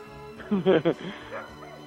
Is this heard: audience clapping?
no